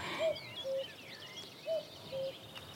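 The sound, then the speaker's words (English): A cuckoo of a kind that lays its eggs in meadow pipit nests calls its two-note 'cuck-oo' twice in steady succession, clear, with faint twittering songbirds in the background. “We've got marsh fritillaries, we've got small pearl-bordered fritillaries, we've got a cuckoo calling”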